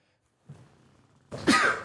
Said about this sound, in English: Oh my gosh, excuse me. I had a sneeze there, so hopefully I can edit that out.